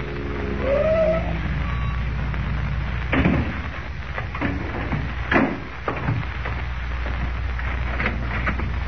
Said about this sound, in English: The following morning, before Lois and Jimmy awaken, Kent, in a car borrowed from Graham, pulls up before the real estate office of Ed Jenks.